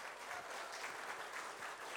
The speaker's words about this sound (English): Will you give them a clap, please, for coming up?